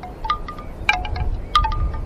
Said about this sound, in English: You can hear it a lot better now. The wind in the background. Isn't that cool? This will definitely help us relax, guys. Birds, wind chimes, wind.